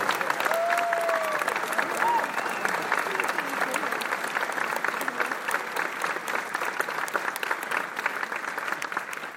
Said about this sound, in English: And the percussion people deserve a special round of applause.